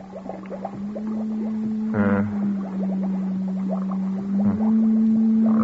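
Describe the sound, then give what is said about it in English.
An encephalograph machine registering a brain's simple alpha waves drones with a steady electronic hum, overlaid by quick warbling chirps and a brief, louder pulsing burst partway through. It is moderately loud, with no voices. “On the encephalograph.”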